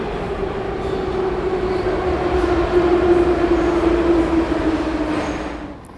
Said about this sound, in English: And before I knew it, I'd landed at Borispol Airport, I dropped my bags off at my Airbnb and was sat on a busy evening metro heading into the city.